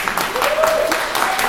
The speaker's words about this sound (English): Look, let's give a round of applause anyway for the panel, by the way. That's fantastic.